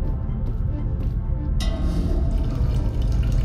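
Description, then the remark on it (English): Drinking water streams steadily from a dispenser, a continuous splashing pour that turns brighter and fuller about halfway through, fairly loud with no voices. “Drinking water will decrease your oxygen supply.”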